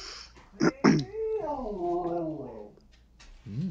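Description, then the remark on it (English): A dog gives a drawn-out, wavering whine-like vocalization lasting over a second, preceded by two short sharp sounds and followed by a brief, softer whine near the end. “Dog doesn't think so.”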